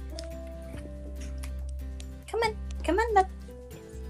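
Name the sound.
cat purring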